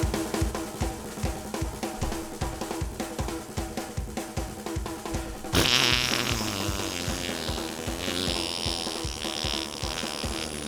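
A fast, steady drum solo pounds along, then about halfway through a loud, buzzy, sputtering fart-like blast erupts and continues over the drumming to the end.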